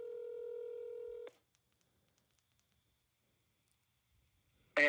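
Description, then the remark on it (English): A phone call being placed on speaker: a steady electronic telephone tone sounds for about a second, stops abruptly, then near-silence with faint clicks before a voice suddenly answers at the end. “Let's call him. Put it on speaker, yeah.”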